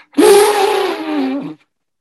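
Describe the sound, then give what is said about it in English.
A man's voice imitates an elephant with a single loud, sustained trumpeting bellow that holds a steady, slightly wavering pitch for over a second before cutting off abruptly. “Actually, I do one elephant impression.”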